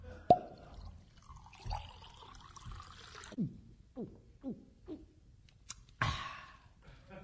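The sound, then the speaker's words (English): A sharp clink, then milk pours steadily for a few seconds, followed by four or five gulping swallows as it is drunk, and a final clatter, with no talking; gravity is used to pour and drink the milk. “Mr. Hard Disk has used gravity to pour and drink his milk.”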